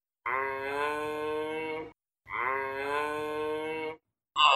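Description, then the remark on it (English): A giraffe gives two long, loud, droning moo-like calls, each lasting under two seconds with a brief pause between, and a third call begins just as it ends. “This is what a giraffe sounds like.”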